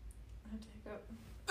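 A sudden, loud hiccup bursts out, a single sharp gulp of breath after a moment of faint, low vocal murmuring.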